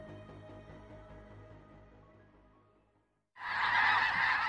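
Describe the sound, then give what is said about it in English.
A large flock of migrating geese honks continuously outdoors at Lake Byron in South Dakota on a Sunday morning, a dense overlapping chorus that fades briefly to near silence before a louder burst of honking returns. “We leave you this Sunday morning at Lake Byron in South Dakota, where 'tis the season for geese to migrate south.”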